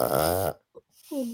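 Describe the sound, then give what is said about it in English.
Jakey, an old dog, snores in his sleep in loud, raspy, snuffly bursts, a long rattling inhale, a brief snort after a pause, then another wheezy, laboured breath starting. “He does sound like he's having trouble breathing.”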